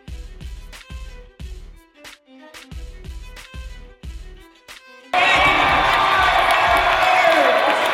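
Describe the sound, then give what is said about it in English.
A steady, punchy drum-driven beat plays for about five seconds, then a loud crowd roar of cheering and shouting suddenly erupts and holds at full volume to the end. “It's a really, really nice crowd, man.”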